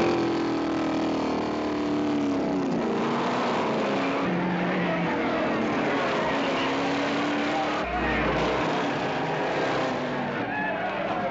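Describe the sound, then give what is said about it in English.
Stock cars roar around a track, their engines loud and continuous, with pitches rising and falling as they race for the entire stretch. “Souped-up getaway cars like this were used on weekends for competitive racing, the birth of stock car racing.”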